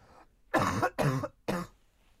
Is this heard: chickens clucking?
no